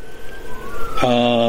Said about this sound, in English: See, they're coming to arrest me right now because I'm talking about this. You hear the sirens in the background in all likelihood.